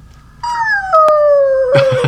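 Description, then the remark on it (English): A person imitates a whale call with one long, wavering moan that slowly slides downward in pitch, loud, turning rougher and breathier at the end. “It makes some whale sounds.”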